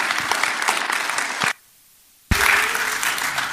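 A crowd claps loudly and steadily, dense applause that cuts out abruptly into near silence for under a second, then resumes just as full.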